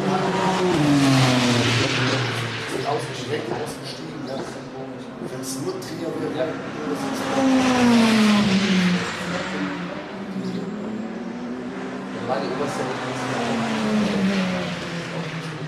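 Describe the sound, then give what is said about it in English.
A Renault Clio race car engine drones loudly throughout, its pitch climbing and falling in repeated waves as it revs up and eases off, with a rough, buzzing tone and no speech. “Noise from a Clio, huh?”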